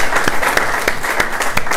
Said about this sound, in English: Maybe everybody together, a round of applause, yeah? Right? You feel that? Right?